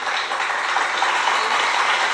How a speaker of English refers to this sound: So we want to thank y'all for that. We want to give y'all a round of applause.